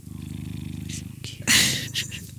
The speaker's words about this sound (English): So we're going to let Lucas purr us out here.